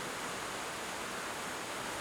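rain falling

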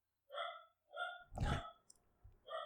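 dogs barking

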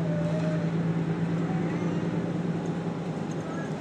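bus interior engine rumble

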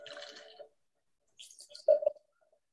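drink being poured

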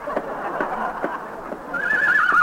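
horse neighing

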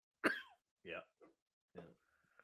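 cough

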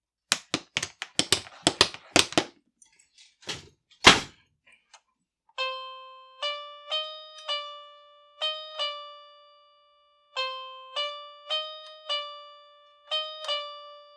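door opening and closing

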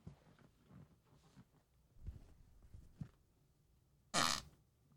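fart

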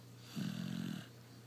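dog snoring

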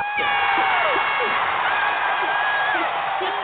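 applause and cheering

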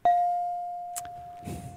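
bell sound effect ding

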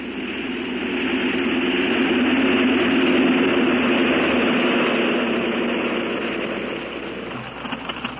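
airplane engine

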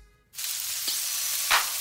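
rain stick being shaken

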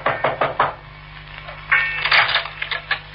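knocking on a door

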